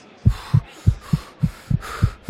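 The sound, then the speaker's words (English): A rapid heartbeat, racing from nervousness just before the start of a race, thumps in steady lub-dub pairs, low and muffled, with a faint hiss above it and no voices. “Before I start the race, the nervousness is making my heart beat fast, and it's making me want to breathe fast, so I have to slow down my breathing.”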